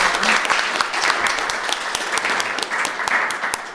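A crowd applauds steadily, dense overlapping claps forming a continuous crackling wash that holds at an even, fairly loud level throughout without pausing.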